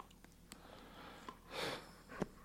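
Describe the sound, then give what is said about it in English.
A teething puppy named Ben, on top of a person outdoors, sniffs in short, sharp puffs, followed by a longer breathy snuffle and a final quick snort. The breathing is loud and airy over a steady low hum, with no talking. “He's sniffing me.”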